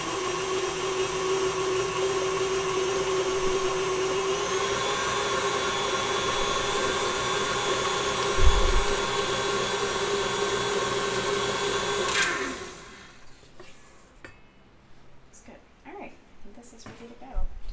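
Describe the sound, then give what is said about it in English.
An electric mixer whirs steadily and loudly for about twelve seconds, blending the wet ingredients for a cake batter, then switches off, leaving a few faint clinks and rustles. “Now we're just mixing up the wet ingredients and I'm gonna add some zest, some lime zest.”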